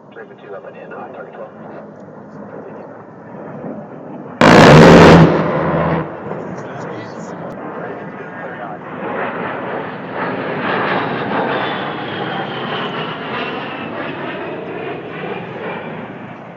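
An A-10 attack jet roars past as a single loud, ripping cannon burst lasts about a second and a half, then the engine's whine swells and lingers as the jet flies by.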